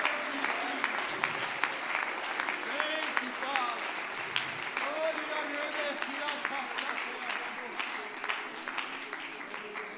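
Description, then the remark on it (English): A church audience claps its hands to the Lord and cheers throughout, a dense wash of many hands with scattered shouts and voices rising over it, loud and sustained without pause. “Come on, why don't you clap your hands to the Lord and lift your voice in victory right now.”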